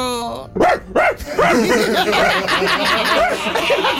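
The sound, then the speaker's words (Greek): A person imitates a dog with a rapid string of loud barks and yips, starting with two separate woofs before breaking into a dense, overlapping flurry of barking, with laughter mixed in. “… ξεκίνησε με τη σκύλα, ήθελα να γαυγίσω λίγο.”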